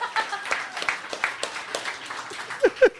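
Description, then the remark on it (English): A live audience in Philadelphia claps in a light, scattered patter for a few seconds at moderate volume, with a couple of brief vocal whoops rising near the end. “Clap those kitten hands together, Philly!”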